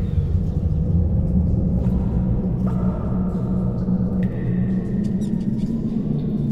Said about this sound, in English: The hollow and closed sounds of a dungeon.